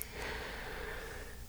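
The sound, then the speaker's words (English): Heavy breathing, a steady, rushing breath sound that carries on without pause for a second or two, with no talking. “I'm just breathing heavily mm-hmm.”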